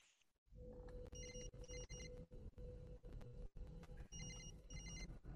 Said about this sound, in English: Well, there's a phone ringing. This looks like the room where the lady was tied up. Oh boy, and her severed hand is holding her cell phone.